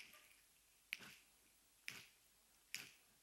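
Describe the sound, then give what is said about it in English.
Three crisp finger snaps from an audience snapping their fingers together to a beat land roughly one per second and slightly quickening, each a sharp bright crack over a faint hiss with no talking. “How many of you guys can snap your fingers?”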